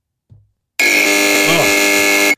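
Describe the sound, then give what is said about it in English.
A loud, harsh game show buzzer, used during a trivia quiz, blares steadily for about a second and a half, preceded by a brief low thump, with no talking over it. “Wow, I got to use the buzzer.”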